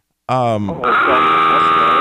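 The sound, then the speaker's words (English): The dive warning alarm of the aircraft carrier USS Enterprise: a short nasal, bleating honk gives way to a loud, harsh, steady buzzing klaxon tone that holds without a break to the end. “It's the warning off of the USS Enterprise.”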